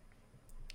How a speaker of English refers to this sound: All right, clicking on an article. Let's see what it says.